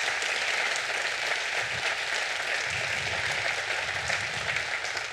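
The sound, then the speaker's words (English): Steady applause from a sizable church audience, a dense wash of many hands clapping at once, sustained and fairly loud for several seconds without any voices, honoring a departing children's ministry staff member for her service to the church. “So can you guys give her a round of applause, first of all, for her service to the church?”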